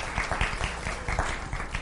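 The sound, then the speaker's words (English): An audience claps for fathers on Father's Day, steady for a couple of seconds, a dense, even patter of many hands at moderate loudness with no break in the sound. “It's you can clap for dads.”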